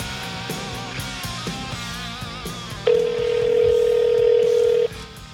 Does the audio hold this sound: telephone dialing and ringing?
yes